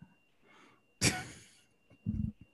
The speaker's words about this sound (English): Why are you breathing so hard over there?